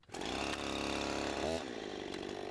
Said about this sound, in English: Oh, you're tickling me with that chainsaw!